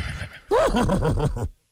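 A horse neighs loudly, a single whinny that rises sharply then shakes down in quick wavering pulses before cutting off, preceded by a brief low rumble.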